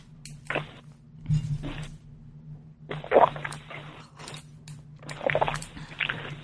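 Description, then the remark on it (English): Someone takes a drink of water: a few soft thunks of a glass being handled and quiet sloshing and sipping over a low steady hum, with no talking. “Excuse me, I'm going to take a drink of water.”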